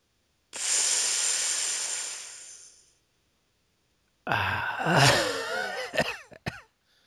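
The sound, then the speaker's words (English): A voice imitates the exaggerated, noticeable breathing style of people on the West Coast in Vancouver, Canada: a long, loud hissing breath that trails off, a short pause, then a raspy, wheezy groan with squeaky rising and falling pitches. “And out on the West Coast in Vancouver, they don't so much have an accent as they have a breathing style that's really noticeable, and it goes something like this.”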